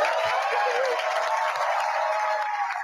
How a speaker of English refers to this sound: What are they clapping for? I mean, 40 years.